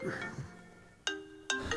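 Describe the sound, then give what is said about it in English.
A mobile phone rings with two bright electronic tone bursts in quick succession, fairly loud, following a moment of faint background talk. “He doesn't like a phone, but he leaves it on. So he said, let me turn it off.”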